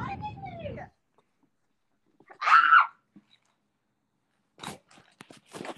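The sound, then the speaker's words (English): A dog bites and chews on a person, making a quick burst of crunchy, clicking mouth sounds, after a short vocal cry and a brief shrill yelp. “My dog is still biting me!”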